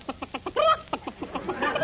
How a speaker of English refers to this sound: Now, wait a minute. There's no eggs in this basket. It's just your pet hen.